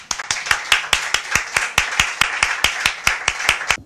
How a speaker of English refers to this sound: Everyone clapped, except for Kamsa. He wasn't too appreciative of that.